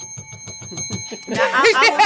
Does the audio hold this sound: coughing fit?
no